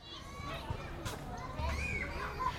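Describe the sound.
A room full of children chattering and calling out over one another, a busy, lively murmur of young voices with occasional higher shouts, steady and fairly close.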